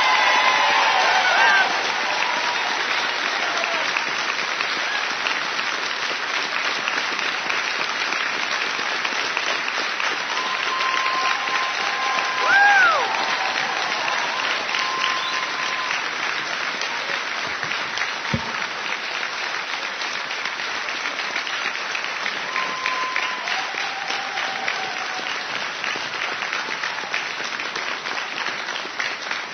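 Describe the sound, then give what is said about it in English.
Sustained applause from a large audience at the opening session of the ACB convention, honoring an Iraq War veteran for his service: a steady dense wash of clapping with a few faint cheers and whistles rising above it, continuing without pause for about half a minute. “Sergeant Major, that round of applause is both for your service to ACB and your service to this country.”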